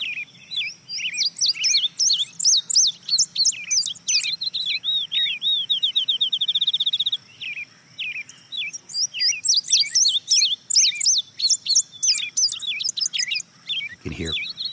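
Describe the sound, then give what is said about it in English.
An indigo bunting sings a bright, sweet song of quick paired notes and a fast trill, repeated over and over, with other birdsong mixed in and a soft thump near the end. “And the next bird you're going to hear is an indigo bunting.”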